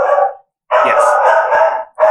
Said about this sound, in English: Your dogs agree? My dogs agree.